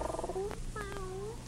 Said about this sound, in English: Come here, cat. Here. Here's a nice dish of food for you.